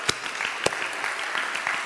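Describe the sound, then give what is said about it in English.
A church audience claps together in praise of God, a dense, steady wash of applause, with a couple of sharper, louder claps standing out near the start. “Give God a praise clap.”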